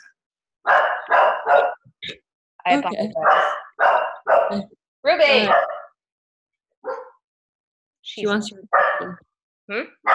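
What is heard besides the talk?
dog barking repeatedly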